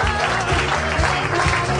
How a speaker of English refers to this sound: Nobody go anywhere. Keep clapping. It's fun. We have people to thank.